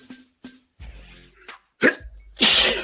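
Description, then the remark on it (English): A loud sneeze bursts out near the end, preceded by a sharp intake and a couple of small throat clicks, with some low murmuring in between. “Bless you.”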